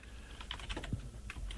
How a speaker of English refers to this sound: We're just checking, or we're just clicking for Dow futures.